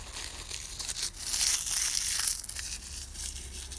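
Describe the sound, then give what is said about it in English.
Dry leaves crunch underfoot in a sustained, crackly burst, loudest in the middle, with bright crinkling texture and no voices. “No, that was a nice crunchy leaf.”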